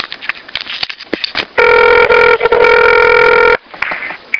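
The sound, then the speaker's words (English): A telephone rings loudly with one steady, buzzy electronic tone lasting about two seconds, on a prank call to Lydia's Flowers, a flower shop, preceded and followed by brief clattering, rustling noises. No one speaks. “Today we're going to phone tap Lydia's flowers.”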